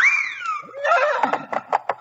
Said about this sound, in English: There are your six dancing white horses. What beautiful horses. Oh, they're the prettiest I ever saw. They're shod with gold.